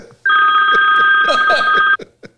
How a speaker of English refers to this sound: Oh my goodness. The phone's ringing. Uh-oh. Let's see who this could be.